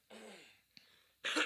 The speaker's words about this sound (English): And then you're just coughing. Dude, coughing straight into the microphone.